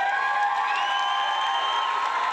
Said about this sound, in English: it appears everyone is cheering you and booing me.